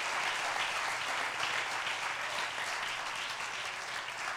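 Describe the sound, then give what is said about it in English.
An audience gives a hand clap to honor God, clapping together in steady, dense applause, many hands blending into a continuous bright patter that holds at an even loudness throughout, with no voices. “I think we ought to give them a hand clap and honor God the same today.”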